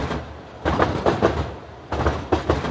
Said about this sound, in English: Sometimes I find myself nodding along to, like, the rhythmic hum of the Uptown C train. And I'm like, is this music?